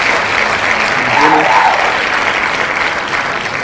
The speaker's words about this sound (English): I know, I always like to start talking whenever the applause is going.